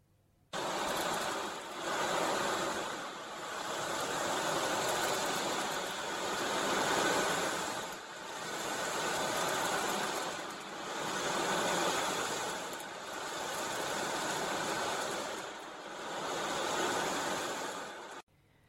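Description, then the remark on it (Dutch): An ocean drum, a large round disc filled with tiny fine beads, is turned slowly and controlled back and forth to depict water, making a steady hissing wash that swells and fades about every two and a half seconds, like waves breaking on a shore. Fairly loud, no voices. “De ocean drum is een grote ronde schijf waar hele kleine fijne kraaltjes in zitten die de speler heel beheersbaar en heel langzaam heen en weer moet draaien om de regelmaat van het water weer te geven.”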